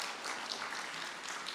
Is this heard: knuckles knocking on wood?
no